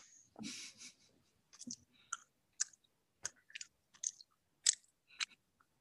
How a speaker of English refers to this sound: It's not what I was expecting. ASMR chewy sweets.